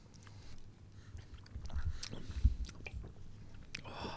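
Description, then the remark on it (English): Crunchy biting and chewing of fries, a steady series of crisp bites and mouth sounds lasting a few seconds, with one sharper crunch near the middle and no talking. “You bite the fries bite back.”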